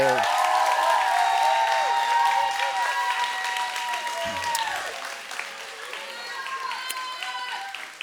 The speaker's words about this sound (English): And so would you do me a favor? Would you just give them a massive round of applause?